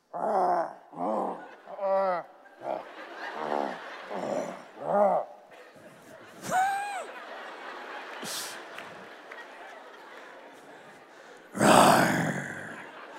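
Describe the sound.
A group of people standing in a semicircle around the speaker imitate lion roars with a run of short, growly voiced bursts, then scattered quieter roars, ending in one loud, raspy roar.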